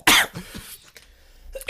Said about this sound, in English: My fake cough led to a real cough.